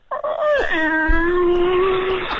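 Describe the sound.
A person's voice imitates a cat with one long, slow meow that starts higher, dips in pitch, then holds a steady, fairly loud tone for about two seconds with no other sounds.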